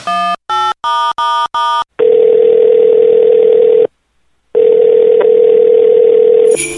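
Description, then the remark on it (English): A rapid series of five touch-tone beeps punches in a number for a phone call to Santa Claus, then a steady telephone dial tone hums, breaks off briefly, and resumes, loud with no talking. “Let me get on the phone.”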